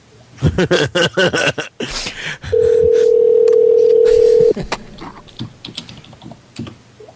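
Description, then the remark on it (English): Quick taps on phone keys as someone calls a person back, then a steady two-second dial tone hums loud, followed by more scattered button clicks. No one speaks. “Let's try and call him back, just for that.”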